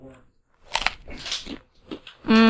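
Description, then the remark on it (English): Crisp crunching from someone chewing food, a few irregular bursts in quick succession, with a brief voice heard at the start and again at the end. “Headphones, mic, crunching noises.”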